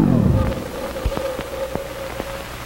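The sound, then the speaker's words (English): A steady wash of white noise hisses throughout, dotted with sharp crackles and clicks, a thin sustained tone humming underneath and a low rumble sliding downward at the start. No one speaks. “When the white noise receded, May's voice faded in.”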